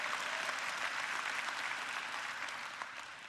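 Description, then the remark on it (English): An audience applauds steadily, a dense wash of many hands clapping at a fairly even level that eases off slightly toward the end, with no voices over it. “You can clap now. I'm going to give you permission to clap.”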